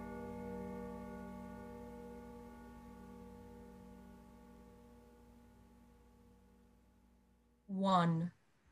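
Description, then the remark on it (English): A single deep church clock bell stroke tolls one in the dark of night, ringing out and humming on, its low, dull, hollow resonant tone slowly fading for several seconds before a voice briefly speaks at the end. “until suddenly the church clock tolled a deep, dull, hollow, melancholy one.”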